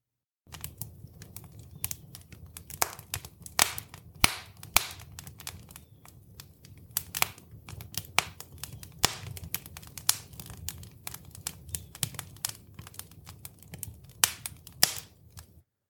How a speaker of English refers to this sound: Sam said it's a crackling fire. And that's correct. But I played this sound because it had a lot of crackling and popping.